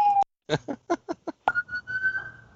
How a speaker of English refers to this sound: Oh, there's that hot take siren.